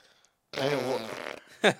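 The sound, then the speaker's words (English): A loud, buzzy raspberry blown with the lips imitates a fart for about a second, then a short sharp puff follows. No one speaks. “Why did you fart with your mouth?”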